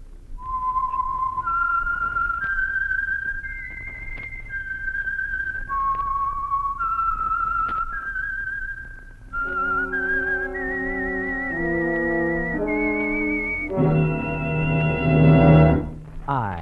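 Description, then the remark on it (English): A lone, clear whistled melody of slow, sustained notes drifts up and down. After about nine seconds it gives way to rich instrumental tones that swell to a loud finish. “Whistling, and I know many things, for I walk by night.”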